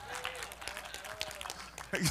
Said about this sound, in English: Now some of y'all are not sure if you should clap right there. That's where you clap, right there. All right, let's clap again. One more time. Come on.